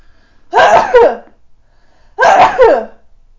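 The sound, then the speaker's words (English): Two loud sneezes about a second and a half apart, each a sharp breathy burst with a quick inhale before it, with quiet in between and no talking. “Oh, hold on, I have to sneeze.”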